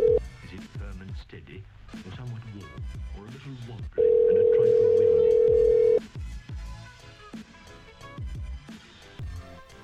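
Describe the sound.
A single steady telephone ring tone on a call, loud and lasting about two seconds, with people talking before and after it.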